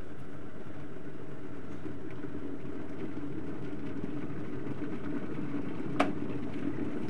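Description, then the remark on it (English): A kettle reheating water to top up a milky coffee gives off a steady, low rumbling hiss that holds evenly throughout, broken by a single sharp click near the end. “Let's get that kettle really hot again.”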